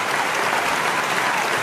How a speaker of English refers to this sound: Thank you. Can we please stop the clapping? Can we stop the goddamn clapping?